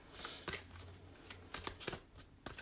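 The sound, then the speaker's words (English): A deck of tarot cards being shuffled, with quick papery riffles and sharp taps at irregular intervals over a steady soft rustle, and no talking. “And as I'm shuffling, I'm just kind of focusing in my energy on the deck and seeing what Spirit has for me.”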